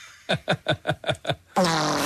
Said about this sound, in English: I'm going to fart, but you got to keep the same expression for 30 seconds.